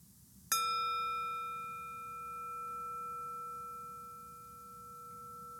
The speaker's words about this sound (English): And then I'll go ahead and ring the bell to close the practice. And when I do, you can feel free to open your eyes and stretch your body, look around the room, take some deep breaths.